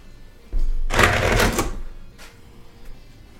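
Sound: dice being rolled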